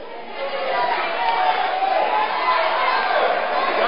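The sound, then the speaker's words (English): A crowd shouts and clamors together in a steady, dense roar of many overlapping voices that holds at an even, fairly loud level for the whole stretch. “And some of you who are here, you are shouting, at this age, you cannot read.”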